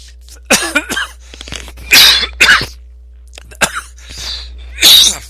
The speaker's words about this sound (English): Hang on a second. I'm gonna cough. Or I did cough.